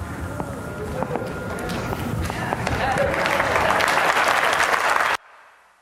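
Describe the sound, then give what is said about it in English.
An audience applauds after a talk on toxicology research, many hands clapping in a dense, steady patter that builds louder, then stops abruptly, leaving only a faint murmur. “Well, I think he needs an extra round of applause for having spoken so quickly and not mispronouncing one word.”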